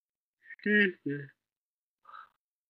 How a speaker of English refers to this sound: Nyx isn't here to yell at me about yawning. Yawn number one.